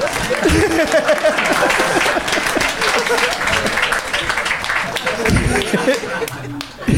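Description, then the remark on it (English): An audience claps steadily for several seconds, a dense, fairly loud patter of many hands, with voices and a bit of chatter mixed in underneath. “You can clap.”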